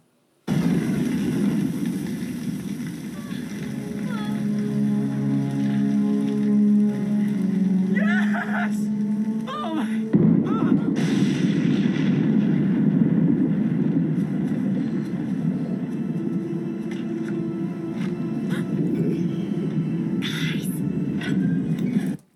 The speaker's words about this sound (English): Well, I guess helicopters going down would probably, they would probably have a lot of fuel in them, which would probably make a pretty big explosion.